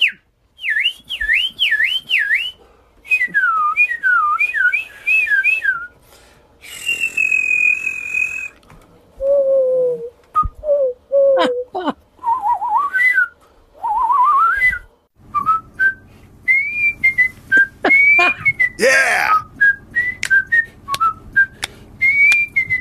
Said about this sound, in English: Oh, yeah. I'm not going to lie. That sounds like just middle of the road whistling. It's more whistling than I can do.